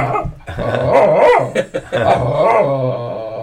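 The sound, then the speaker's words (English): A one-year-old female dog barks in a continuous run of growly, yowling vocalizations that rise and fall in pitch for several seconds, with no talking alongside. “That's the poor dog.”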